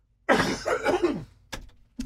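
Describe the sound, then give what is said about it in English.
A fairly loud throat clearing rumbles for about a second, followed by two short, sharp coughs spaced apart, with no talking. “I'm going to turn off my microphone so I can cough.”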